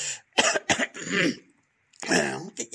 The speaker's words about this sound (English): but I just need to clear my throat a little bit. But I, you know, like smoking, you know.